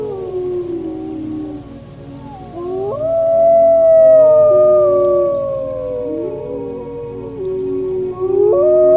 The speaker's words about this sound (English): a single solitary wolf howl, a calling, and you know that this wolf is calling to you. And then the call is repeated and joined by other wolves howling their song too.